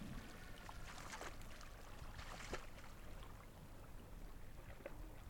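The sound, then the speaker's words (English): Ice crunches and crackles in irregular bursts on a beach in Antarctica, a few sharper cracks standing out against water lapping up on the beach, a steady low rumble and wind, with no voices. “You can hear the crunching ice.”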